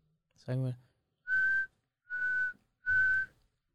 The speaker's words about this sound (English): I don't know if I ever whistled into halftime, so I don't know if I can whistle out per the rules.